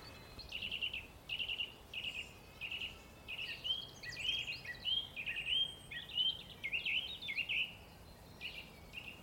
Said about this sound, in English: I'm going to let this song thrush play us out, actually.